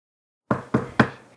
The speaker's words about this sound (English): And then she wakes up. As there is a knock at the door, startling her awake.